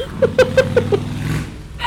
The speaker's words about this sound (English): That motorcycle just scared the shit out of both of us.